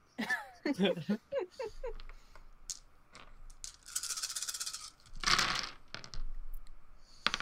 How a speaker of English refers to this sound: And me dropping dice off the table.